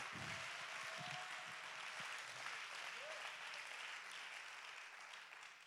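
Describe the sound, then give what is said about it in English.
An audience claps hands in praise to God in a sustained, dense wash of applause that holds steady at full volume for several seconds, then begins to thin slightly at the end. “Go ahead and clap your hands.”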